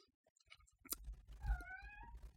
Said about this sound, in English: I hope you can't hear my cat meowing.